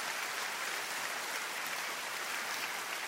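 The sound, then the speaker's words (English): Steady applause from an audience responding to a speaker's teaching, a dense, continuous patter of many hands clapping at an even level for a few seconds with no voices. “And he's getting a round of applause for this banal, shallow, false doctrine.”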